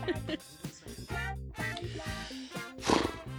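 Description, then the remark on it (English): A horse whinnies loudly, a series of harsh, wavering neighs and snorts filling a few seconds with no talking. “There's a horse.”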